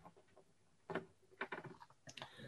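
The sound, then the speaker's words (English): A few small plastic clicks as two little plastic pins at the top of a slate frame push through paper to hold it steady, quiet, coming in short irregular bursts with brief pauses between them and no talking. “And at the top of the frame, there were two little plastic pins, which will hopefully make a nice satisfying click click as it goes through the paper to hold it steady.”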